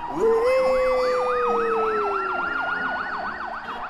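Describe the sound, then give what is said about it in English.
A loud ambulance siren wails, its rapid rising-and-falling yelp layered over a steady sliding tone, sounding continuously for several seconds with no voices. “We're going with him on the ambulance!”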